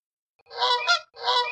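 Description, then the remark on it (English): A goose honks loudly, two harsh, nasal calls in quick succession with a brief break between them, no other sounds around. “Said the goose, as it continued dragging Crowley backwards in the direction of the village.”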